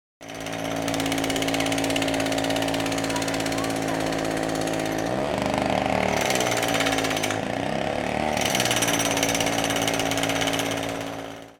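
A loud, continuous mechanical roar with a rapid pounding rattle, like a jackhammer running for about ten seconds, its tone shifting slightly partway through.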